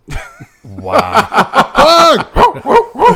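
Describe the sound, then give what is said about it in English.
A dog bark sound effect played from a soundboard: a quick, loud series of sharp yaps, about eight barks in three seconds, with a brief low growl near the start and a hint of laughter mixed in. “You know, if you really want to piss off your neighbors, get a puppy and give it the same name as their child.”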